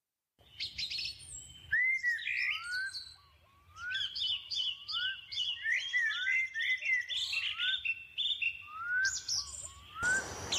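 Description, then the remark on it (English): Birds chirp and sing continuously, with bright, rapid rising whistles and tweets overlapping in a lively chorus, and no voices present. “and where the sun reunites with its celestial kin, the youngest took off the ring and set the bird free, knowing dear Bobulus would keep the bridge intact until he reached the gate of the Amber Castle.”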